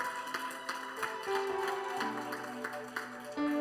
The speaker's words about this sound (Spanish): Y quiero que para ellos le demos un fuerte aplauso.